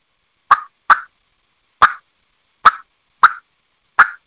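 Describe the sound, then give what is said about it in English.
Six sharp, popping turkey clucks made on a mouth call, imitating an Eastern or Osceola turkey cluck, spaced irregularly with slight raspy tails, each a quick loud burst with no talking in between. “I do have a mouth call here. I'll demonstrate what I'm talking about.”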